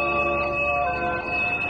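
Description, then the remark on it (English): A bell, rung to call the citizen jurors to assemble, rings out in a steady, sustained peal, its bright metallic tones layered and humming evenly for a couple of seconds with no voices over it. “And then a bell rang.”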